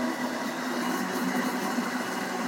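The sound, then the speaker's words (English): A blender runs steadily at high speed, emulsifying a dressing: a loud, continuous motorized whir with a low hum underneath, holding constant without pause and no voices over it. “My last ingredient that I'm going to add in the blender here is the distilled white vinegar.”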